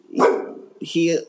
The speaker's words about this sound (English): I don't even know what you're barking at.